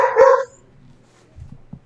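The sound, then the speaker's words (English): A single loud, sharp dog bark rings out, followed by a few softer, low grumbling or muffled woofs trailing off; the dog is riled up, barking at someone moving under the house. “And he has my dog so riled up.”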